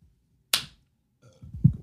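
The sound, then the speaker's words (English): A single sharp hand clap, made for syncing recordings, cracks out once and decays quickly, followed by a short stretch of low rumbling, handling-like noise. No one speaks. “Also, we had to do one more clap, so let me see your mic.”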